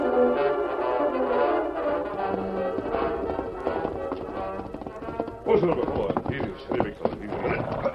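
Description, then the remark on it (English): Horse hooves gallop in a quick, rhythmic clatter that grows louder in the last few seconds, rising over a steady tonal background. “Now go and saddle my horse and be quick about it.”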